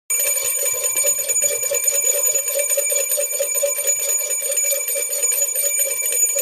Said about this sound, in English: It's a two-bell Friday. They're all two-bell Fridays now.